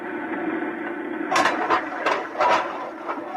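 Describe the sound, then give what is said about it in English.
An airlock's outer door mechanism opens after the lock is filled: a steady mechanical hum gives way to a series of sharp, bright clanks and ratcheting bursts, about five of them, fairly loud with no voices. “I'm going to fill the lock. Here goes the outer door.”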